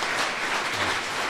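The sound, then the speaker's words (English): A small live audience claps for District 5 candidates after a debate, a steady, dense patter of many overlapping handclaps, fairly loud and even throughout, with no voices over it. “We'll now ask our small live audience for a round of applause for these candidates.”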